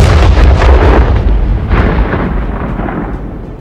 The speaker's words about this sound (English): It took place in a town called Cambrai in France. The British had 400 tanks built. They started the battle with a huge explosion under the German trenches.